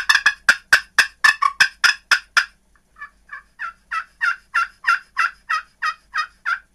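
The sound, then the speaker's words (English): A rapid, excited run of turkey yelps and cutts blown on a game call, loud, a dense burst of sharp notes that pauses briefly, then continues in a steady rhythmic series. “Get excited.”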